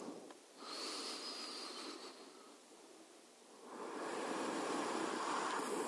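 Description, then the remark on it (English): Two slow, deliberate deep breaths, each a long airy rush that swells and fades, the second fuller and longer than the first. They are fairly quiet, with no talking. “And then take two deliberate, deep breathing breaths.”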